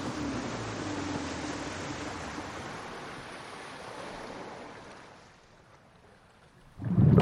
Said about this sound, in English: What was that? Something hit the boat.